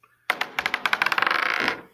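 Dice are rolled with disadvantage, twice to take the lower, for an energy bow attack in a tabletop game, clattering across a tabletop: a sharp first hit, then a quickening run of bright, hard clicks that blur into a rattle before settling. No voices are heard.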